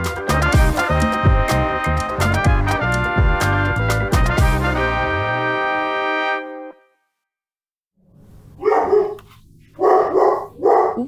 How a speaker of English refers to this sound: No, it's okay. You've got dogs barking.